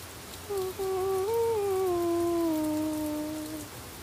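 Steady pouring rain hisses across the whole clip in a dense, even wash, while a single long, wavering tonal cry rises over it in the middle and slowly fades.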